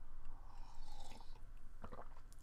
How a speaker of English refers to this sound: Take a sip of my coffee before we get this shit rolling.